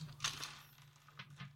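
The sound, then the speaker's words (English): A small d20 die clatters across a hard tabletop in a few quick, sharp clicks, pauses, then rattles briefly again before settling. Fairly quiet, with a steady low hum underneath and no talking. “I rolled it.”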